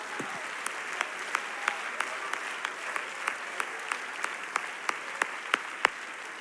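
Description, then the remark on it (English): An audience claps their hands to the Lord during a sermon. It is a dense wash of many hands, with sharper, steady beats punching through at an even rhythm. No voices stand out over the clapping. “Oh, somebody ought to just clap your hands to the Lord for a moment.”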